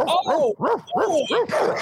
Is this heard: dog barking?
yes